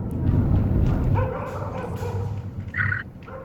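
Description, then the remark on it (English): Dogs barking and yipping, recorded from the ground in Sana'a province, over a steady low rumble of outdoor background noise, with a few sharper high-pitched yelps standing out near the end. “Obviously, this is taken from the ground because you can hear the dogs.”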